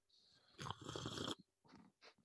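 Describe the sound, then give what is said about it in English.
A loud slurping sip of coffee from a cup lasting under a second, followed by a few softer breathy swallowing sounds, with no talking. “I had to get my sip of coffee in.”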